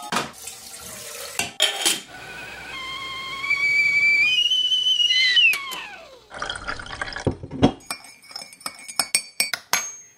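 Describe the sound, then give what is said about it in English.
A kettle whistles with a rising, wavering tone for a few seconds, then falls away, followed by running water and the light clink and clatter of cups and crockery being handled. “let's put the kettle on.”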